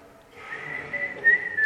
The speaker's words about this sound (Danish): Jamen, prøv lige at fløjte.